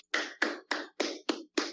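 A single pair of hands claps six times in an even, steady rhythm, each clap sharp, with short silences between and no voices.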